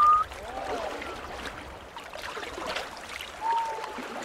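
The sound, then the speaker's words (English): Henyo divers surface from the sea and exhale in short, high whistling breaths to take in more oxygen, one right at the start and another near the end, over a steady wash of lapping, splashing water. “You are hearing the sounds the henyo make when they burst out of the sea to exhale and take in more oxygen.”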